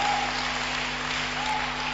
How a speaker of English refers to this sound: Those who are clapping, you are understanding the message.